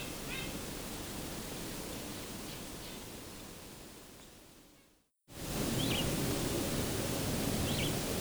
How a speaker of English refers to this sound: This call did turn out to be a purple finch. My initial hunch, it seems, was correct here. They sometimes use this vireo-like call.